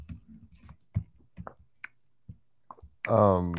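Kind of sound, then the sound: food or drink, person drinking water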